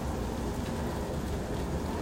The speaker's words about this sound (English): Can y'all hear the rain?